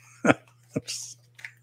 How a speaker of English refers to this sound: I don't know how it sounds to listen to me hiccup, but I'm sorry.